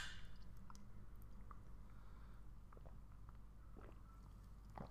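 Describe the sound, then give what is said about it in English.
Someone takes a big gulp of a drink, with quiet wet mouth clicks and swallowing noises scattered over a few seconds and no talking. “Big gulp. Here we go. Cheers.”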